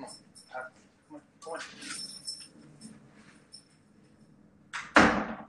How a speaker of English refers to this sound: I shut the door and she's figured out how to get the weasel away in.